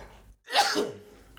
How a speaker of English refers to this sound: The sneezing boy.